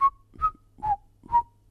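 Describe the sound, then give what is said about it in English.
A short whistled phrase, the last part of a song's tune, of four clear, evenly spaced notes, each a bright pitched tone with slight bends, moderately loud with no talking. “he found a way to whistle that last part of Jingle Bells after every song that he sang or played”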